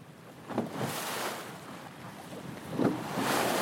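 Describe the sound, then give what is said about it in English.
Water sloshes and laps against the hull of a fishing boat off the Amalfi coast in uneven surges, with a steady breezy wash beneath and a couple of sharper splashes; no one speaks. “He's on a fishing boat off the Amalfi coast.”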